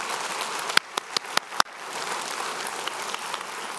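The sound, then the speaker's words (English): A church audience claps for the people who give at the church, a dense, steady patter of many hands with a few sharp, louder individual claps standing out early on. No one speaks over it. “We never really do that for the givers because it's kind of one of the subjects like, do we clap for a giver or not? It's supposed to be a, but I want to do it today.”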